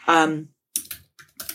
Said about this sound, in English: Oh my God, this is really going to annoy me. You just have to listen to me clicking. It's no good.